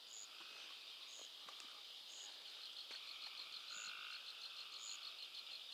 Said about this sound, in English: Wow. Fireflies are out tonight. And all the frogs and birds and crickets. Trees are just alive with sound.